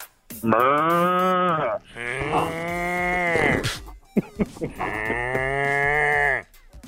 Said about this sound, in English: I was wondering, is that something you're doing, or do you have like a sounder? Oh, no, that's the cow that I have right out in front. You know, if I just touch him in the right spot, that's it. I mean, there's not a lot to it.